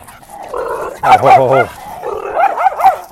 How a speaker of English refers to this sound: Oh, Bud. Another big dog. That was kind of a pretty dog. It was very pretty. Not kind of. It was a pretty dog. A husky with blue eyes. Those are always pretty. Probably about 50, 60 pounds. So Bud's 22 pounds. He's barking at him.